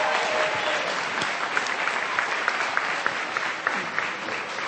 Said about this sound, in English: Let's have one more round of applause for this great group.